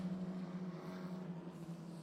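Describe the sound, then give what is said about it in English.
A steady, droning roar of GB3 championship single-seater racing cars circling a racetrack during their race, a continuous buzzing hum at moderate volume that rises and falls slightly, with no talking. “And the cars you can hear on track at the moment are the GB3 championship cars that are having their race”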